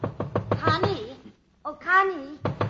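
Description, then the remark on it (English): A woman knocks on a bedroom door to wake a heavily sleeping person: a quick run of four or five sharp, fairly loud knocks, followed straight away by a voice calling out, with a short pause before more talking. “I was sleeping very heavily when she knocked on my door.”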